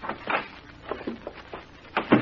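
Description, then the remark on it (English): A door opens and closes, with a few scattered knocks and clicks, ending in a louder thump as it shuts. No one speaks. “How do you lock this door? There's a thing underneath the doorknob there. You slide it over.”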